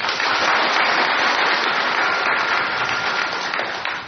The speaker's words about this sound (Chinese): 我们在这里鼓掌，谢谢她。